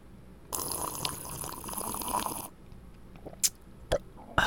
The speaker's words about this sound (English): It's hard to make sound when you're drinking out of a water bottle. Like here, I'm drinking out of a bottle of water. It's a bottle of water.